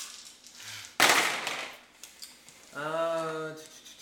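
Dice rolled for defense in a game clatter onto a hard surface in one sharp burst that rattles briefly and fades within a second; a short hummed tone follows a moment later.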